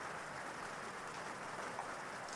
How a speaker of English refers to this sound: Sometimes, when a rainstorm is just starting, there are only a few raindrops here and there, and you can see how each water droplet impacts the water surface.